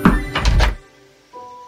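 Three quick, solid knocks on the door of a house in a steady rhythm, fairly loud, followed by a short quiet stretch with a faint sustained tone at the end.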